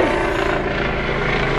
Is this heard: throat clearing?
no